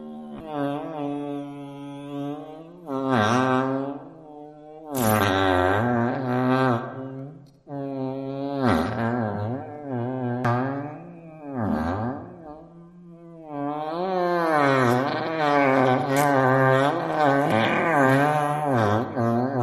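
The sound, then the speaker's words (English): A long, loud fart sound effect, a buzzy, rumbling blast that wobbles in pitch and sputters through several surges and brief breaks for about twenty seconds, with no talking. “Her churning innards let loose the most colossal, immensely loud and impossibly long, jaw-dropping fart that's ever been heard.”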